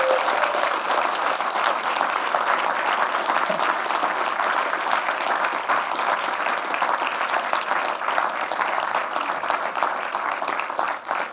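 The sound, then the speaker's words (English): Sustained audience applause, a dense, steady wash of many hands clapping at an even loudness for over ten seconds, with no one speaking, as Jamie Johnson author Dan Friedman comes down the stairs to the stage. “I only made you sit at the back so you could get a long applause when you're coming down the stairs.”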